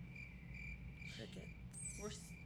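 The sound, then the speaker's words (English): Crickets chirp in a steady, continuous high trill against a low background rumble, with a couple of brief sharper chirps breaking in near the end. “Crickets.”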